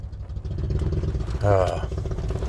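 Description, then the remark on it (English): A motorcycle engine rumbles steadily in traffic as the rider rides in front of the speaker, a low throbbing drone that swells briefly louder partway through, with indistinct voices faintly underneath. “I mean, you see all these motorcycle riders, you know, and my God, you know, this guy's in front of me riding.”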